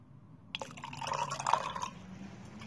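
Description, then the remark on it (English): Coffee pours in a steady stream into a cup for about a second and a half, the pitch rising slightly as it fills, ending with a soft clink. “It's time to pour some coffee.”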